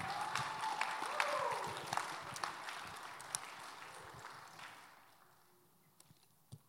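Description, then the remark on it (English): A crowd claps for people who have stood up when asked, in a dense burst of many overlapping hand claps that holds steady for several seconds, then thins out and fades, leaving a few last scattered claps. “Yeah, y'all can clap.”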